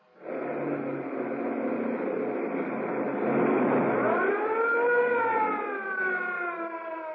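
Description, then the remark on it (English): A police siren wails over a loud rush of engine and road noise as a police car chases a fleeing sedan at breakneck speed through narrow streets around a waterfront, its harmonic tone swelling up and bending down midway through as the car races by. “Threading their way at breakneck speed through the narrow streets around the waterfront, the police car follows the fleeing sedan.”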